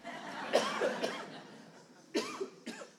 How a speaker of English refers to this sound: I'm just going to clear my throat once again.